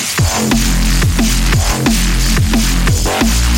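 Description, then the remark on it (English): A loud, steady wash of radio hiss like television static, representing the light from the Big Bang still spreading out, with a low hum underneath and deep thumping pulses that repeat at a regular beat, roughly every two-thirds of a second. “Hear it as a radio hiss.”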